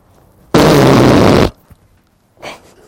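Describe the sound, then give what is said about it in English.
A single loud hand fart noise, a rough, blasting squelch lasting about a second, followed by quiet and a faint brief rustle. No one speaks. “As a kid, dude, you never made fart sounds with your hands or not?”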